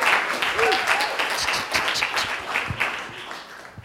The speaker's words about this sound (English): And I think they're recording, so the more you clap and hoot and holler, the better you're going to sound.